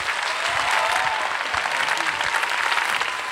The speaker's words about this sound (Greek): Το χειροκρότημά σας